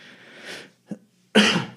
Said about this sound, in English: I am, sorry about the cough. I am getting a little better, by the way. I know you guys have struggled through listening to me cough in the past episodes, but I am getting better.